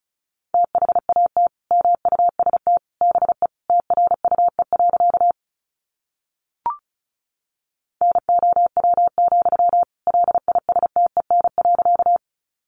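Fast Morse code at 35 words per minute sending practice sentences built from the top 400 words, in a single steady mid-pitched tone, rapid dots and dashes in two long runs separated by a pause with one brief click. No voices.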